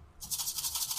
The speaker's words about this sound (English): our comedians must buzz in using our very high-tech buzzer system.